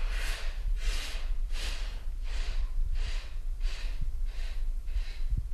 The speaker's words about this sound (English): Then you take a deep breath in through the nose and relax. So can we do that all together?